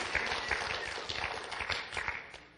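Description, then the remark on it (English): A crowd claps together in steady, dense applause that holds at an even level for a few seconds, muted, with no voices over it. “As a clap offering, because they're, we honor those.”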